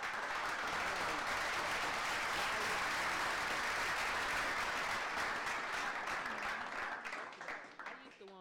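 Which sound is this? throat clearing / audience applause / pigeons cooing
audience applause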